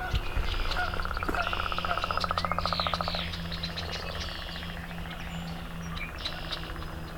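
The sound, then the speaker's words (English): A leopard frog gives a rapid, rattling snore of pulses for about three seconds in Cattail Marsh on a spring morning after rain, over a steady marsh chorus of frogs, including chorus frogs, and scattered bird calls, including red-winged blackbirds and a swamp sparrow. “And we got leopard frog.”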